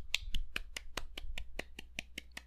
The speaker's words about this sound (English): A nice soft clap.